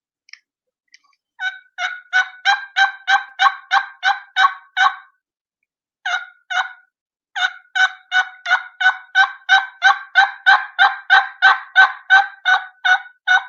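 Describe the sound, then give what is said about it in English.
A turkey call imitates a hen's front end yelp: a quick, steady string of clean, high-pitched notes with almost no rasp in the back, a brief pause, then a longer run. Fairly loud, with no talking. “This is a front end yelp, almost no rasp.”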